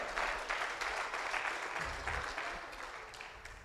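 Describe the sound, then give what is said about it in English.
A crowd claps hands together in steady, dense applause, many overlapping claps forming a continuous wash of sound that gradually softens toward the end. “Come on, clap your hands, amen.”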